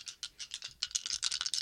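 Dice clatter and rattle in a quick, uneven series of sharp clicks, several bursts running together over less than two seconds, fairly quiet, with no voices.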